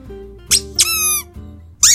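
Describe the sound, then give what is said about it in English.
A squeaky dog toy squeezed a few times, giving short bright squeals with a longer, harmonic-rich squeak in the middle, fairly loud against a quiet low hum. “Right, well, anyone listen to this outdoors with a car window down, so I'm going to have every dog in the land running towards them.”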